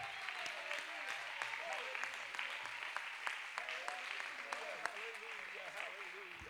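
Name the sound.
audience clapping hands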